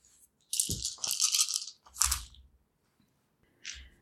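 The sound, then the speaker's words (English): Dice rolled for a covert check clatter and rattle across a hard surface in a few quick bursts, with a rolling shake followed by sharp clicks as they settle, then one last short tumble. “Okay, roll covert.”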